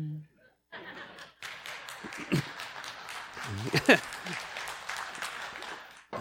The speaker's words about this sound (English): Okay, I'm not sure how I feel about that clapping. That's okay. I'm just kidding.